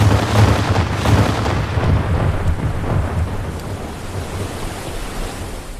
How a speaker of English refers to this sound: They were surrounded. Suddenly, below the deck, the cannons of the Pintalaga flared into action.